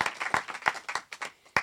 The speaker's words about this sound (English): I'm waiting for the fucking applause, sweethearts, which I'll be waiting each time I do. Thank you very much.